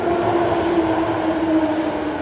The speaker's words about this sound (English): oh, there's another train, that's an outer urban one.